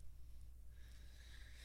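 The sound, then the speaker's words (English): A dog, Hurls, sniffs and snuffles around under something in a steady stream of short nasal breaths, quiet and continuous with no voices. “Sniffing around for some shit.”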